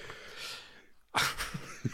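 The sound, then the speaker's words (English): A person fakes a sneeze: a breathy drawn-in build-up, a brief hush, then one loud, sharp explosive burst that trails off into breathy noise. “Flower smells his cock, and then sneezes.”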